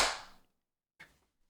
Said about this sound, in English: And then we'll do a clap sync in 3, 2, 1.